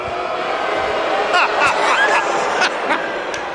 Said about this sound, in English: Guy's getting booed out of the arena.